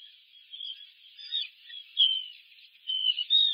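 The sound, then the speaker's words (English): A steady stream of thin, high-pitched chirping from a puffin burrow heard through a live nest cam, fairly quiet, swelling and fading in irregular pulses throughout, with no voices present. “I'm hearing chirping.”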